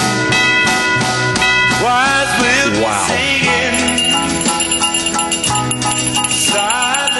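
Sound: bell ringing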